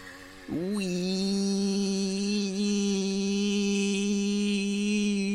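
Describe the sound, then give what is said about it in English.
A tiny motorbike going up a canal buzzes with a thin, whining engine drone; its pitch dips briefly, then revs up and holds a steady, loud note for several seconds, with no voices. “Someone on a tiny little motorbike is going up the canal.”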